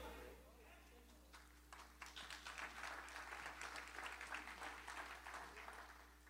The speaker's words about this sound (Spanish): Aplaudan bien, amados, ¿ok? Aplaudan bien. Si van a aplaudir, aplaudan bien.